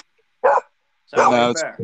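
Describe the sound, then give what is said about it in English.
Two pit bulls, one a blue-nosed pit bull, bark because a guest is over: a short single bark, then a pause, then a longer, louder run of rough, harmonic barking ending in a brief yip. “No, it's my two pit bulls there. Being assholes because we have a guest over.”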